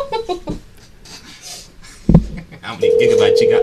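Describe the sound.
A telephone line tone comes in near the end of a phone call, steady, loud and unbroken, after a short stretch of muffled background voices and a sudden thump.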